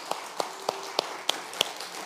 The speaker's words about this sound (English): Hey, you got it. Guys, give them a round of applause. These look great.